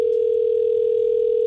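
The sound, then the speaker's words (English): A telephone line tone, on a call placed by radio station 100.3 The X Rocks in Boise, hums loudly at one steady, mid-low pitch, unbroken for the whole moment, with no voices or other sounds over it. “We got the number here.”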